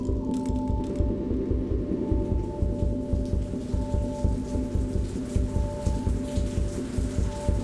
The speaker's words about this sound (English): Outside, it begins to rain, but the flooding preceded it, I'm sure.